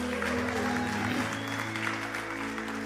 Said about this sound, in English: And for those of you that clapped and applauded and actually listened to the message, it was great,